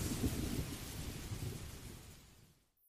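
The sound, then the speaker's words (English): Steady rain hisses down with a deep rumble underneath, holding at a constant wash before fading away just before the end. No voices are heard. “Instead, she let the warmth of the rainwater run over her.”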